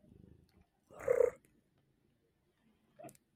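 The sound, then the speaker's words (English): A female cat purrs softly, then gives a louder rolling trill and, after a pause, one short chirping trill. No voices are heard. “I love your little trills.”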